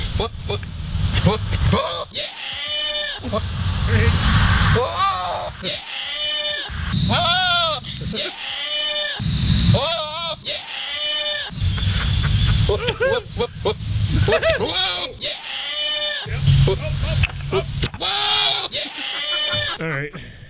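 Loud, repeated goat bleats and throaty mating calls come in rapid bursts, mixed with a man's wavering yells over about twenty seconds, all close and raucous with hardly any pause.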